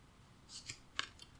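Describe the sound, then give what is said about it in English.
Quiet, crisp papery flicks and a sharp snap as shuffled cards are fanned out, a few quick bursts over about a second with no talking. “All right, I'm just going to sort of fan them out. I shuffled them up.”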